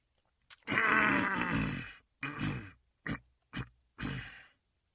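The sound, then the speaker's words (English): A long, raspy throat clearing followed by four shorter gruff bursts, each separated by brief pauses. The sounds are loud and harsh, with no talking. “That was him clearing his throat, not me.”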